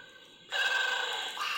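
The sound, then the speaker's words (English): An electronic toy suddenly wakes and starts a loud, continuous warbling trill with a buzzy edge as it vibrates, ringing steadily for about a second after a brief quiet start. “The Tribble's awake! Holy shit! Check him out! Oh my god, he vibrates.”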